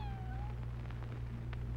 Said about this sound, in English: What was that? Is that a cat? Yeah. Yeah. Hey, cat. Here. Come here, fella. What's a cat doing in this place? Oh, you're hungry. Yeah, it's hungry. But we ain't got nothing for you,